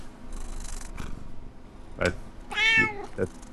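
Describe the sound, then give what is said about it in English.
A person imitates a cat, giving a drawn-out, wavering meow, preceded by a short breathy burst and followed by a brief trailing sound, fairly loud. “It's sometimes it helps to get into the mind of a cat, really.”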